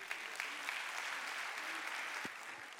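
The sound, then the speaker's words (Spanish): An audience claps steadily for the Lord, a dense, even wash of many hands applauding together with no pauses, holding at a consistent moderate loudness throughout. “Cristo, dale un aplauso al Señor.”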